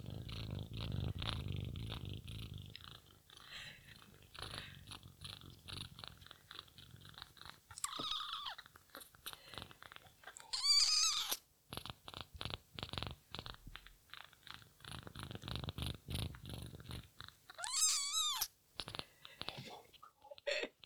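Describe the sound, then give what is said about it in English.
A 5-week-old hand-raised female kitten purrs in a soft, steady rumble, broken by faint rustles and a couple of thin, high mews. “They're her little purrs.”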